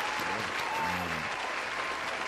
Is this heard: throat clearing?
no